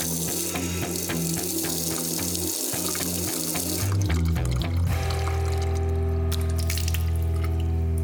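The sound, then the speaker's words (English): A tap runs steadily, water splashing into a sink, the flow shifting and growing fuller partway through before settling into a constant rushing stream, as someone dampens the end of a towel with tap water in mid-40s degree heat. “I dampen the end of the towel with some water from the tap and splash some across my forehead.”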